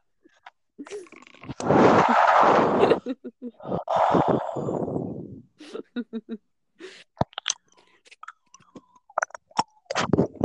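Two loud, breathy bursts like snorts give way to a scattered run of sharp, hard clicks, the tapping of a phone against teeth, irregular and fairly loud, with no talking.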